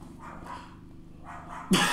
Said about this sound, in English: It doesn't matter. The podcast can't hear it. Anyways, yeah, there's a dog barking because you can't hear it.